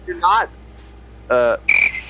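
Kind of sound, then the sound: insect, chirping crickets sound effect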